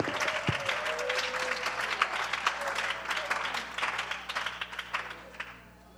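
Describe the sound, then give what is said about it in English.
An audience claps together while taking their seats, praising the Lord, in a dense, steady wash of applause with sharp overlapping hand strikes, holding at a fairly loud level before tapering off at the end. “Won't you clap while you're sitting, taking your seats, praise the Lord.”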